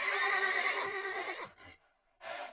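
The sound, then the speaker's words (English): A startled horse on an open plain lets out a long, loud whinny with a bright, shaking harmonic pitch, followed by two shorter, fainter snorting bursts after brief pauses, with no one talking. “The neighing of horses caught the attention of them both, and they whirled, drawing their weapons.”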